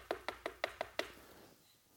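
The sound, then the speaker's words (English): A quick burst of six firm knocks on a wooden door, evenly spaced, followed by a short fade into quiet. No one speaks. “Joseph opens the door, and he sees these men, these wealthy men, these magis with Burger King hats on and robes.”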